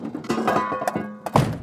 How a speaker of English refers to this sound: Sunny raises his massive hoof and slams it into the gang, sending them flying backward through the open door and back into the hallway.